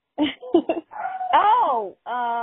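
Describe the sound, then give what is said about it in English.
A dog lets out a few quick barks, then a long wavering whine that rises and falls, followed by another steady, drawn-out whining cry. “And the dog is barking again.”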